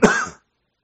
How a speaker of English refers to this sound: Sorry. Are you good? No. Okay. I'll go ahead and wait for you to finish coughing up your lungs there and getting cancer.